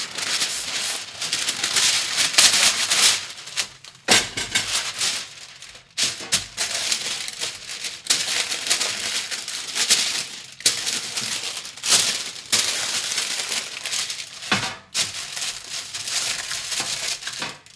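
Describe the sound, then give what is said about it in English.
Parchment paper crinkles and rustles steadily for several seconds, fairly loud, with a few brief pauses as the sheet is pressed flat onto a metal cookie sheet. “I got to get out our cookie sheet. And we're going to layer some parchment paper on it because it's going to help it not stick.”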